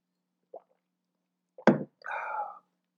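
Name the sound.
sip of water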